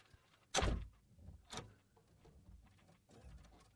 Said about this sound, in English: Hold on one second. Let me close the door to the studio. Okay.